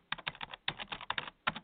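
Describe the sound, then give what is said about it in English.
Quick bursts of computer keyboard typing, a rapid run of clicky keystrokes in uneven clusters with short pauses between, moderately loud, no voices. “Just a couple clips, a little bit of typing.”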